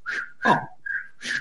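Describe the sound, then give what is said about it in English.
A voice mimics AFL umpire Lee Fisher blowing his whistle during a players' brawl, with four short, shrill toots in quick succession, moderately loud, with no other talking. “Blowing this whistle.”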